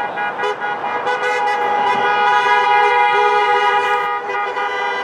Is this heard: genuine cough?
no